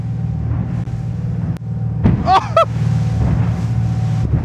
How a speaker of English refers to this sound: You'll find an adrenaline-packed rib trip in the waters of the Berwickshire Marine Reserve. We're crashing over the waves.